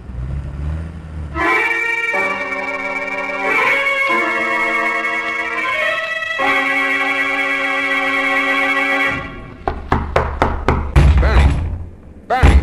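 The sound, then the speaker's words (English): Long, sustained horn-like tones hold for several seconds, then give way to a quick series of loud knocks on a door, rapping in an uneven rhythm near the end. “you better open this door if you value your casino.”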